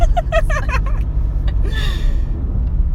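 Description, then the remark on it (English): A heavy truck rumbles past in traffic, a deep continuous engine drone with a brief hiss of air brakes or tires, amid steady road noise. “Fuck you, truck.”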